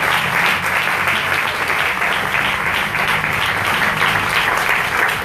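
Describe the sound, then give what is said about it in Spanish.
Sustained applause from a crowd at a prayer gathering, given in thanks to the brethren, fills the whole stretch, a dense, steady roar of many hands clapping at once, loud, with no pauses or talking over it. “Demos un aplauso y gracias a los hermanos.”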